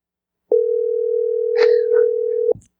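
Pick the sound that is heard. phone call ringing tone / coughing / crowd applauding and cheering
phone call ringing tone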